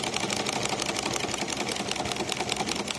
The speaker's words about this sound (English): Inside a standalone single-story building, a lone commercial one surrounded by houses on 35th Avenue in Phoenix, sewing machines that were probably made around the time of World War II were.